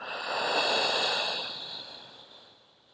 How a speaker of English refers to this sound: And then when you're exhaling, you're just exhaling anything you're needing to release out of your body. For some of you, you might want to be breathing through your mouth and kind of might be a little bit forceful.